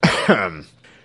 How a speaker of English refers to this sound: The king coughed and looked at her a little nervously.